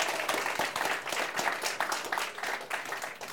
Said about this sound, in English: Thank you for that clap. That gave me a moment to get a quick swig.